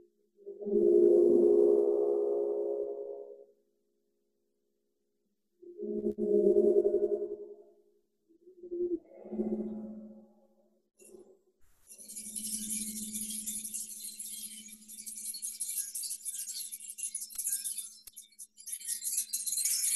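A gong-bath gong is struck three times, each stroke blooming into a low, humming tone that fades, then it resonates continuously as a steady deep drone beneath a bright, shimmering wash.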